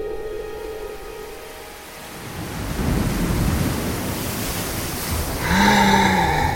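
Deep, muffled distant thunder rumbles and rolls for several seconds over a steady hiss like rain, with faint sustained tones at the start and a brief pitched, harmonic sound near the end.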